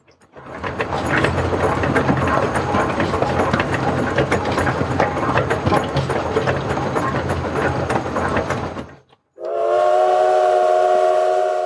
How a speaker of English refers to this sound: After rattling around like that for a day, our weary traveler would disembark the train and get into a stagecoach.